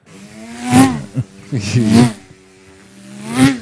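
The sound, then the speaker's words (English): A voice imitates a NASCAR race car engine, making three loud revving bursts with harmonic pitches that rise and sweep, separated by short pauses. “Sound like a NASCAR car.”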